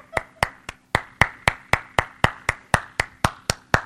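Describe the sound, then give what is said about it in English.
One person clapping slowly and deliberately, about fifteen sharp, evenly spaced claps in a steady rhythm, fairly loud, with no voices. “And so I just stand up and clap when he gets”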